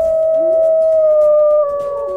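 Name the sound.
wolf howling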